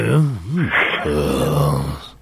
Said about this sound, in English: Were you feeling tired as well, eh? Do you know what? You've just caught me. I've had a massive yawn. I'm knackered all of a sudden.